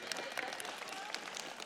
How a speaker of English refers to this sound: You see one, oh, thank you, yes. You're allowed to clap.